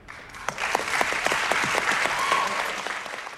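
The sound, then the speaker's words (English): An audience applauds steadily, many hands clapping in a dense, crackling wash that holds at an even, moderate level for the whole few seconds without fading. “We too applaud Michelle.”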